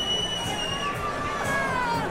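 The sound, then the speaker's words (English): A dense crowd murmurs and chatters in the Commodore Ballroom before a rock concert, steady and lively, with a few excited shouts rising above the constant babble of many voices. “And the crowd is a little buzzed.”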